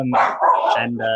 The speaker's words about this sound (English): as my dog interrupts us right now